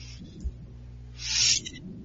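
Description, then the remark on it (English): A single short blast from a duck call whistle, high and reedy, lasting about a third of a second over a low, steady background rumble. “The most fun that people have when it comes to making fun of the Ducks is when you go to a game and bring a duck call whistle.”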